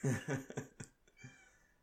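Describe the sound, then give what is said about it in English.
A cat yowls at a letterbox in a quick string of short, strained cries that weaken and trail off into near quiet, with no one speaking. “Got a minute of silence to the cat's fucking letterbox.”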